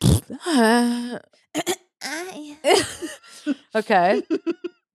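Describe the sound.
A person makes loud, drawn-out throat-clearing noises, a string of raspy, voiced grunts and hacks that rise and fall in pitch before ending in a few short choppy bursts.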